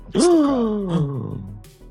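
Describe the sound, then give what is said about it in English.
A single loud gasp: a sharp breathy intake that turns into a voiced, drawn-out sound sliding downward in pitch before trailing off, with no talking around it. “There's a gasp.”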